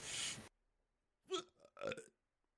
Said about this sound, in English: Oh my god, how many more problems can we run in with my hiccups, freaking recording stopping?